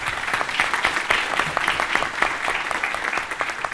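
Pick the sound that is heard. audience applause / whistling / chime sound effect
audience applause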